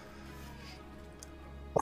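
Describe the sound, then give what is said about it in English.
After a stretch of quiet background hum, one short, sharp sneeze bursts out near the end, a quick double-peaked snort, louder than the background. “If in fact that was a sneeze, if not, attack.”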